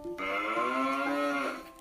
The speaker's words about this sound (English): All around him were cows mooing. They mooed very low notes.